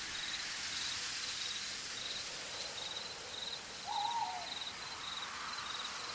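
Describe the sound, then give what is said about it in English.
A steady wash of rain fills a forest ambience, with insects chirping in a regular pulsing pattern and a single owl hoot rising briefly near the end; no one speaks. “Maybe a little bit of another classic you might have forgotten about, such as Rain in the Forest.”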